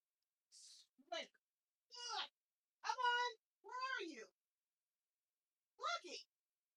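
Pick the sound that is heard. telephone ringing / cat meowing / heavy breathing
cat meowing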